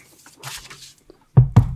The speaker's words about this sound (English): you wanna head up to the gate and knock? Yep. Knock. Alright.